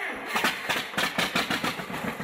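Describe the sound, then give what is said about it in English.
The engine of a propane John Deere 620 tractor in Texas starting up and settling into a loud, steady chugging beat, its evenly spaced putts repeating several times a second with no talking over it. “I want to head to Texas and check out a John Deere 620 in its work clothes.”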